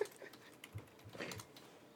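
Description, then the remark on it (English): Quiet, irregular clicking of keys being typed on a computer keyboard while tweeting at Amazon, a few soft taps scattered over two seconds, faint, with no one talking. “Sorry, I'm at a weird angle to my keyboard while I'm recording.”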